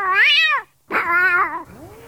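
A man's cat meows loudly in response to his loud caterwauling imitation, two drawn-out, wavering cries separated by a short pause, the second trailing off into a softer, lower-pitched moan.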